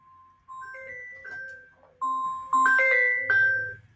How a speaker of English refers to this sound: sorry about that, it was my phone. So what I feel right now, I have to mute this because that is going to call back in probably about 3 seconds.